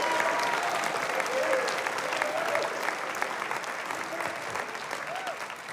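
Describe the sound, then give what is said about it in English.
An audience claps hands for God in a steady, dense wash of applause that holds at an even level throughout, with faint voices calling out beneath the clapping. “Let God hear your mighty hand clap.”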